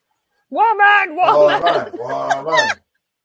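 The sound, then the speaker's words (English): A human voice imitates a chicken, producing a couple of seconds of wobbly, clucking, chortling squawks, fairly loud, with no other sounds around it. “Come on, give us the bird. Yeah, that kind of bird, but you know.”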